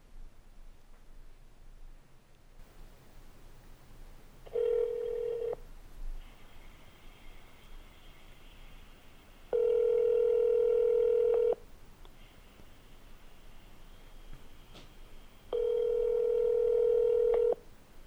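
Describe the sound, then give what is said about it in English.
Telephone line tones: a short beep followed by two longer steady tones, spaced a few seconds apart, loud and clear over faint background hiss, with no one talking. “And now, a phone call to Adam Burstein.”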